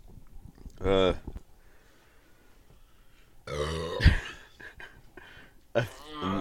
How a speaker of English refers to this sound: Dude, that smells so bad. I'm in pain. Why did you burp on me like that? That was awful.